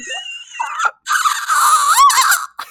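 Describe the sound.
A person imitates the strangled, choking scream of someone with bleach in his throat: shrill, raspy squealing that wavers in pitch, breaks off briefly, then resumes louder and strained, piercing, with no talking.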